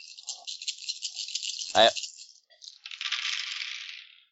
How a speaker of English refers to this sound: Alright, everyone roll dice. Rolling it. Roll the dice, roll all the dice.